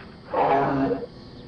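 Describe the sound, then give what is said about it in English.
A single deep, growling monster roar bursts out loud, swelling for under a second before cutting off into quiet, with no one speaking. “Your planet will be torn to pieces, and I will hear your screams as I roar.”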